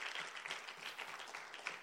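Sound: audience clapping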